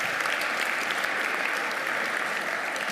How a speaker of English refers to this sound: Can we give these two, on behalf of all the volunteers in the church and ministry, a great round of applause?